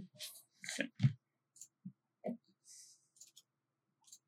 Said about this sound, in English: So then you need to also roll 3 dice for your act of hubris. And it is just 3 dice in general?